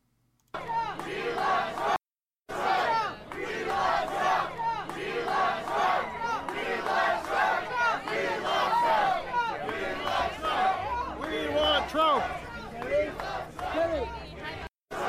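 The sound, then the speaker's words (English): A large crowd chants for Trump loudly in unison at an appearance by DeSantis, voices rising and falling in a steady rhythmic pattern, with a brief dropout near the start and a dense roar sustained throughout. “So we got DeSantis showing up somewhere, somehow, when the crowd is chanting for Trump.”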